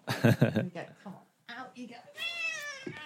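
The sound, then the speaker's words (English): A cat lets out loud meows while being moved away from a computer she was trying to stand on, ending in a long, drawn-out, complaining wail that sounds distinctly unhappy, with a brief pause partway through. “the cat did too, and I'm just going to move her because she's trying to stand on the computer and turn it off”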